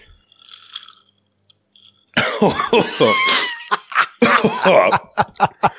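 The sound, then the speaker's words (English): A quiet, brief slurp of a sip of strong vodka, a short pause, then a loud fit of harsh coughing and sputtering gasps, bursts tapering into a few sharp coughs. “But I will have a sip of it for the listeners here.”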